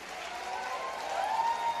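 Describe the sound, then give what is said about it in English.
A large crowd claps steadily and continuously in a worship service, giving a one-minute clap offering to the Lord, a dense wash of applause with faint cheering voices rising through it, sustained at an even level for the whole moment. “Come on, let's give a 1 minute clap offering to the King of Kings and the Lord of Lords, and you shout your victory!”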